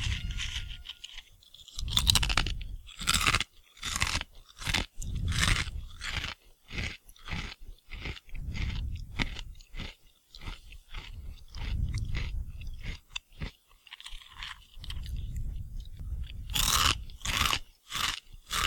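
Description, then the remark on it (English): Loud crunching as someone chews a handful of crispy snack, with repeated sharp crackling bites in an irregular rhythm for about twenty seconds, no talking. “Eesh, that's really crunchy.”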